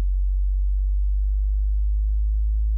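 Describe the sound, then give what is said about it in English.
A deep, continuous sine-wave tone hums low and loud for the whole stretch, slowly sweeping upward in frequency through about 37 to 43 hertz, with no voices or other sounds around it. “So that's like the lower, that's 37, 38. So it's going up through the hertz.”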